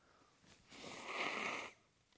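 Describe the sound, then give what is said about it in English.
A single forceful nose blow into a tissue, close to a microphone strapped to the face, a rushing, breathy burst lasting about a second with a soft snuffle before it. No one speaks. “You shouldn't have a microphone strapped to your face when you blow your nose.”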